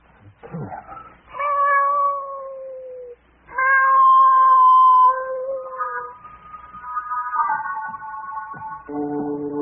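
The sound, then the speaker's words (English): A cat yowls and caterwauls in long, wavering, drawn-out cries, several loud howls in a row with brief gaps, rising and falling in pitch, with no talking. “I'm bringing this cat in here.”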